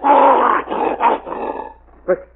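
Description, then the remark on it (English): A pet wolf growls loudly in a long rough snarl, then several shorter growling bursts, ending with one brief sharp yelp. “The wolf's coming for me.”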